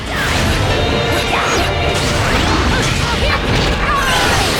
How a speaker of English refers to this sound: All right, we jump off the missile as it crashes into a building, and now we're on top of a different missile.